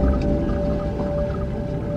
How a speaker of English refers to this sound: Was wolves, Mac. Far off, a pack of them. And every time I heard the howls